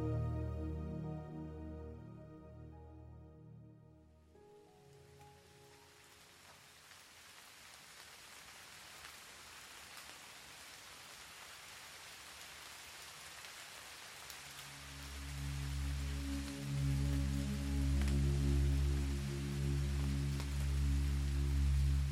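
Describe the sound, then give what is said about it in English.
Steady, gentle rain patters in a soft continuous hiss outside a bedroom window in Manila, the Philippines, heard with calm sustained music tones that fade out early and swell back in toward the end. “The sound of rain falling gently outside your window reaches your ears.”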